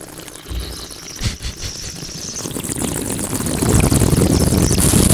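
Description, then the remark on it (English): A long, airy slurp as someone aerates a small sip of apple juice while tasting it, drawing air through the mouthful. It is a wet, hissing gurgle that starts softly and grows steadily louder, with no talking. “So next, we are going to take a small sip. And then we're going to go to aerate.”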